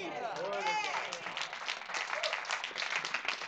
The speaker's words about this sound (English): Now, for the 10% of you that didn't clap because I used the word world.